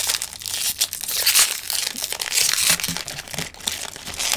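Crinkly plastic packaging of a blind-bag toy being torn and crumpled open, a continuous bright rustling with sharp crackles and rips over several seconds, with no talking.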